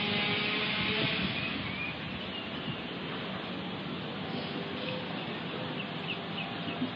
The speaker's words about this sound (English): listening to birds chirp and just the relaxing sounds out here, not the saws going off, not the sirens, that's all part of it too, but just enjoy the moment, everybody.